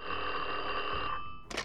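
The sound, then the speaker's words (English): An old telephone bell rings loudly and steadily for about a second in one of Frankie Yale's clubs on July 1st, 1928, a strange phone call. Its metallic clatter fades out, followed by a brief higher-pitched clink near the end. “On July 1st, 1928, Frankie Yale was going about his daily routine in one of his clubs when he got a strange phone call.”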